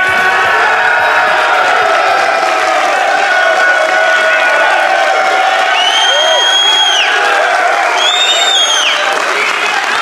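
A large crowd in Durham, North Carolina cheers loudly and continuously, with sustained roaring and clapping, while high-pitched whoops and whistles rise above the din near the end.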